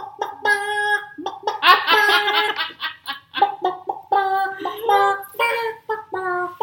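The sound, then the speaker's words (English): A voice imitates clucking chickens with a rapid, close series of nasal bawks and squawky warbles, some quick and choppy, others drawn out, continuing steadily for several seconds. “I think of Gonzo's chickens every time I hear that song. Every time I hear that part. Because it sounds like”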